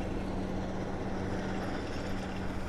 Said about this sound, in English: I've reached King Barrow Quarries, and you can hear that quarrying is taking place today.